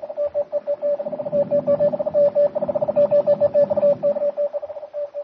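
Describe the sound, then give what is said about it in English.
A radio message beeps out in rapid keyed pulses of a single steady mid-pitched tone, bursts of short and longer dits running continuously over a faint low static rumble, with no voices. “But even as the message that will hurry the doom of the ship and all on board crackles through the air”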